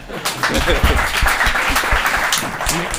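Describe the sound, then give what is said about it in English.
Applause from a crowd fills the whole three seconds, a dense, steady patter of many hands clapping at once with no single rhythm, fairly loud and even throughout, with some voices mixed in. “You can always tell when they clap how many people there were”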